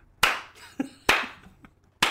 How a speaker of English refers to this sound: It was hard to watch the rest of the episode when you stood up and slowly clapped.